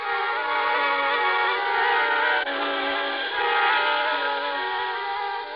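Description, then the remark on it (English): A train's whistle blows loud and sustained for several seconds, a steady, chord-like wail that holds without a break while a train bound for New York rolls by. No one speaks. “then a train down to New York.”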